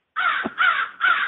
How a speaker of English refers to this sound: You can hear the crows. I can, calling away in the background.